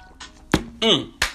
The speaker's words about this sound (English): So dehydration is taking effect. That's why I'm drinking water right now.